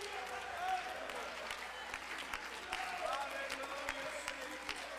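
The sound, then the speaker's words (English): A crowd claps hands and stomps feet to praise God, in a steady, continuous wash of applause-like noise, with scattered sharper hits and voices mixed underneath throughout. “Stomp your feet, clap your hands, give him praise.”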